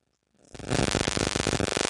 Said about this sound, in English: Move your phone, because your phone gives interference to the microphone.